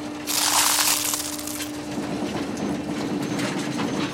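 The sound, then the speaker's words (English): A garbage truck's trash compactor crushes its load: a loud, hissing mechanical surge gives way to steady grinding and clattering over a constant low motor hum, with no voices. “Is there a trash compactor on that truck?”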